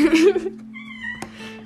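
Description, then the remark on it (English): A loud, drawn-out cat meow bursts out at the start, rising and then trailing off, leaving a steady low hum and a few faint tones behind. “You heard it first from the cat.”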